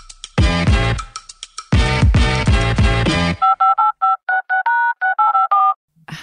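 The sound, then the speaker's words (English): A short burst of lively music gives way to a rapid run of about a dozen crisp touch-tone telephone dialing beeps, each tone brief and evenly spaced, as the host calls her father for an interview. “So we're going to get him on the phone now and we're going to ask him a few questions.”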